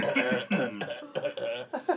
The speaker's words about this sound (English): This is going to have to be on the next … album, man. We'll just use the cough as like a metal breakdown.